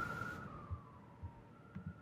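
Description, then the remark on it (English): A police siren wails steadily outside, its tone sliding slightly lower as it passes, heard faintly over a low background rumble with no one speaking. “I was waiting for the siren to pass.”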